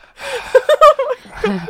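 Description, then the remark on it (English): A voice imitates the sudden gasp of a sleeping person after briefly stopping breathing: a breathy intake followed by a few quick, choppy vocal catches, then a short trailing exhale-like sound, with no words spoken. “My favourite bits are when you sort of stop breathing for a second and like, I'm like, ooh, and then you're like.”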